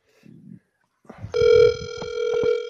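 A phone call rings out: after a short muffled murmur, a steady, buzzy ringback tone sounds for over a second, loud and even, over low rumbling handling noise.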